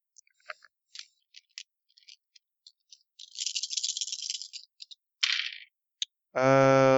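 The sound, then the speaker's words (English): Dice rolled for a freakout roll clatter: scattered sharp clicks, then a dense rolling rattle for over a second, a brief clattering burst, and a single tick, ending in a steady buzzy tone. “Oh, ah, dice.”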